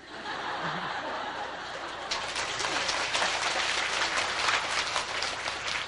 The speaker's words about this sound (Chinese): 我们听人家砰砰就拍手呢，奇怪，我们慈悲心丢到哪里去了啊